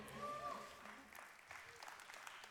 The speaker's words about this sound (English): That was an interesting clap.